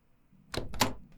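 Two quick, sharp mechanical clunks close together as a door is unlocked and opened, the lock turning and the latch releasing, with no voices.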